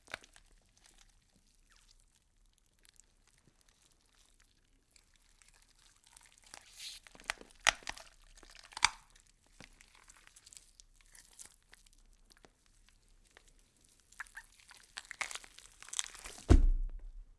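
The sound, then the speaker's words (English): A dog named Terrain chews on a John Lynx garlic teriyaki dog jerky treat, with quiet wet smacking broken by irregular bursts of crunching and crinkly tearing that grow louder toward the end, with no talking. “So without further ado, please sit back and revel in the sound of Terrain enjoying the all-new, all-natural, kennel-to-table, gluten-free, Alaskan Terrier, garlic teriyaki jerky from John Lynx.”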